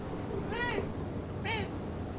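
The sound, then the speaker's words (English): A female domestic cat meows twice, a longer drawn-out call followed about a second later by a shorter one, against a faint steady background hiss. “Do you know what she's saying when she meows?”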